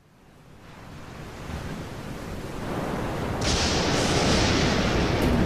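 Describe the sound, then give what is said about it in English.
Heavy ocean waves surge and crash against a ship's hull and bash over its deck as the ship is tossed back and forth, a dense roaring wash that swells steadily louder, with a brighter hissing spray breaking in near the end. No one speaks. “Water bashes against the deck. The ship groans as it is tossed back and forth from the waves.”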